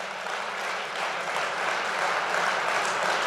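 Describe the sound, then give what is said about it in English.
A crowd applauding steadily, a dense, even patter of many hands clapping that holds at a fairly constant loudness throughout, with no voices standing out above it. “Yeah, absolutely applaud that.”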